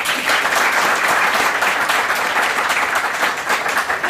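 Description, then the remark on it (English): A crowd at grogMEET applauds a panel steadily, many hands clapping into a dense, even roar of claps that stays loud throughout with no voices over it. “So, a quick round of applause for the panel.”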